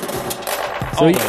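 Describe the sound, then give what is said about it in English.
A gritty 8-bit drum module, controlled via MIDI from Ableton Live, plays a quick run of crunchy, noisy percussive hits, ending on a brighter pitched tom-like tone that rings briefly. “This is like 8-bit drum module.”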